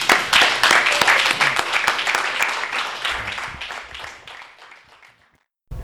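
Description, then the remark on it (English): The audience at a Skylight Books author reading gives one last round of applause: dense, steady clapping that stays loud for a few seconds, then thins out and fades to silence, followed by a brief burst of new sound at the very end. “So one last round of applause.”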